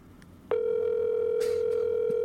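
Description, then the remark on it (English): A steady electronic phone tone begins abruptly after a brief quiet moment and holds unbroken and fairly loud to the end, like an outgoing call's ringing tone heard over the line. “Why do I think the ringing is funny?”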